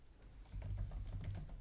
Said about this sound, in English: Just Googling, you can see the keys tapping.